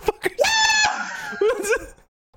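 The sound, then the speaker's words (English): A voice lets out a short, shrill, high-pitched scream, imitating a panicked character, then trails off into strained, wavering vocal noises before falling silent. “Just screaming and honking the horn.”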